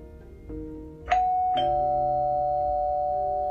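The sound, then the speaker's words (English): A doorbell chimes on Halloween night with two clear ding-dong tones, the second note ringing out and sustaining. Loud, with no voices present. “The doorbell rings.”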